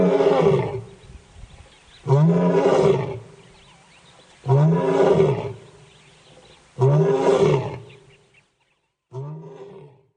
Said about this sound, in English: And I Googled about a roaring lion to get a more, you know, physical picture what it is. And here is a roaring lion, how it looks like and how it sounds.